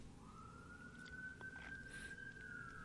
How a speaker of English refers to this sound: Sorry, sirens on my end.